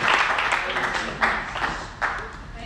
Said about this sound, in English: Put your Bibles down, clap your hands, shout, God bless the word. Thank you, Jesus.